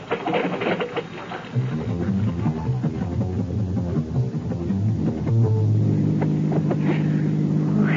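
A stick-shift car engine drones steadily while driving, a continuous low rumble that grows louder and more even about halfway through, with faint hiss of air behind it.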